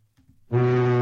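A single loud, blaring boat horn honk kicks in after a moment of faint low rumbling and holds steady, deep and brassy, until the sound cuts off.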